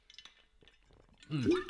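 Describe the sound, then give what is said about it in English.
Faint glass clinks and small shuffling noises, then a loud, voiced, satisfied 'ahh' with a sliding pitch after a drink of water from a glass. “And we're going to take a quick high quality water break because I've obviously been talking a lot longer before this podcast started.”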